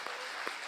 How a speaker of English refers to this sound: And then this is the harvest. This is the harvest. Can I have clapping hands for this harvest, please?